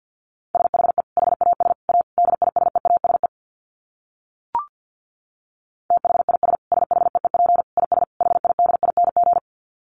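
Fast Morse code at about 50 words per minute: a single steady mid-pitched beep keyed in rapid dots and dashes, two long runs separated by a quiet gap with one brief blip.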